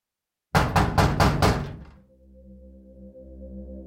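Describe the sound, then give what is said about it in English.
Five quick, heavy knocks on a door land in a fast burst, loud, then give way to a low, steady tonal drone. “The sudden knock on the door made Robin Williams jump so high he almost dropped his bottle.”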